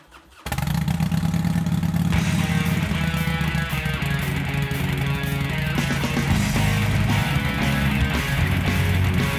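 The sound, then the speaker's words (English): A motorcycle engine fires up after a brief quiet moment and keeps running with a loud, steady, rumbling idle, with a few slight rises in revs. “You see, these guys, these brothers, they had something in that garage that I was very interested in. Motorcycles.”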